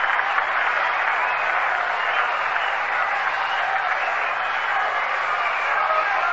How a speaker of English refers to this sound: Frank Thomas short hops it up with it, throws over to first base in time, and he's out. An appreciative response from the crowd here at the Polo Grounds.